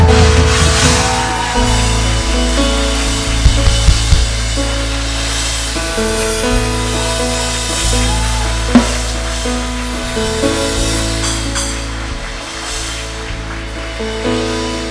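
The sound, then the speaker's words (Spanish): A church audience applauds new members loudly and steadily for the full stretch, a dense wash of clapping over sustained, shifting chords from a keyboard or organ. “Que se escuche fuerte, fuerte el aplauso, por favor.”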